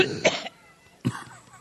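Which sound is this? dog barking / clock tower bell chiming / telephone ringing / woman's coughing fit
woman's coughing fit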